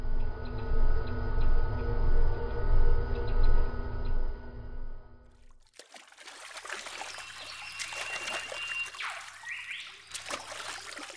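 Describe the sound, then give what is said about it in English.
A steady, droning hum fills the first half, then cuts away to gentle river water trickling and lapping, with soft splashes and small drips scattered throughout. “We can paddle side by side for now until the river narrows.”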